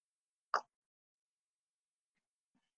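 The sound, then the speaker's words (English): A single quick, wet sip from a drink, a short plop-like burst followed by near silence with a faint soft sound at the end. “I'll take a quick sip break.”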